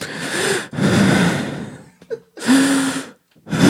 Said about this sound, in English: just breathe in and out.